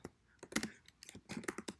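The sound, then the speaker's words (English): Quick, uneven keystrokes clatter on a computer keyboard, a steady flurry of crisp clicks and taps with no voices over them. “You better be like typing like the ASMR lady.”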